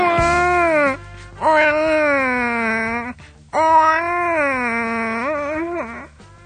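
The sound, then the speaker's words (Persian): A man's voice mimics a baby crying in three long, wavering wails, each rising and falling with strained, whiny pitch, loud with short breaks between them. “الکی مثلا من نینیم، شما دختران بگین نه گریه نکن، بیا ممه بخور و اینا، تو شادیاتون جبران میکنم.”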